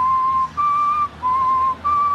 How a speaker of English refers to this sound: My real question is, what were you whistling? What were you whistling? Hello, Dolly? No, it was Wagner.